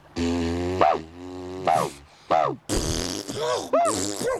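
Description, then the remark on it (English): A human voice imitates the howl of a dingo, a wild dog, making the sound in the voice box with a run of buzzy, strained calls, each swooping up and down in pitch, the later ones louder and more shrill, with no words. “So, for example, the dingo, that's a wild dog. They don't bark, they howl. You've got to do the sound in your voice box.”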